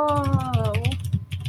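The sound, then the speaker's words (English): Rapid, steady clacking of keys on a mechanical keyboard, crisp, with a brief sliding melodic voice-like tone over the first half before the typing continues alone. “Yes, the mechanical keyboard she sings to me.”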